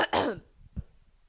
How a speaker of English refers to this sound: I hate when that happens. When you cough constantly and you can't clear your throat.